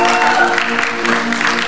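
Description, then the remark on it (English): An audience at a worship service claps its hands for the Lord in a loud, dense, continuous patter, with steady sustained musical tones holding underneath throughout. “Come on, give the Lord a better hand clap.”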